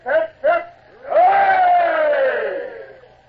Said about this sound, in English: And three cheers for the king. Now, all together now. Hip, hip, hip. Hooray! Hip, hip, hip. Hooray!